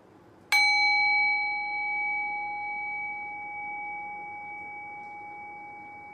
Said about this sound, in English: And so allowing the sound of the bell as it decays out and fades into silence, allowing it to show where that space is, to guide you into silence.